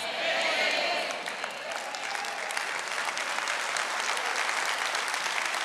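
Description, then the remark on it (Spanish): An audience applauds the speaker's words steadily, a dense wash of clapping that stays loud and even for several seconds, with a brief swell of voices near the start. “Ahora fíjate, yo me alegro que aplaudan estas palabras que salen de mi boca, pero esto no quiere decir nada.”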